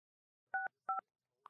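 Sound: touch-tone telephone dialing tones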